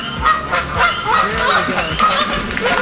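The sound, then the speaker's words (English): Repeated loud honking calls from a waterfowl, overlapping in a busy, continuous chorus with harsh nasal tones for a few seconds. “It's a waterfowl”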